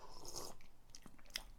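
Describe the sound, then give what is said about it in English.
A wet slurp as someone takes a swig of whiskey from a two-thirds finished bottle: a few short mouth and swallowing noises, fairly quiet, ending with a sharper knock. No one speaks. “Yeah, I'll have a slurp and we'll go spoilers.”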